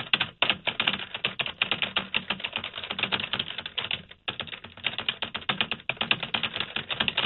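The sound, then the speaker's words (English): Rapid, continuous clatter of keys on a computer keyboard, steady, with dense overlapping clicks and only a brief pause partway through. No voices. “What are you typing? Why is this taking so long?”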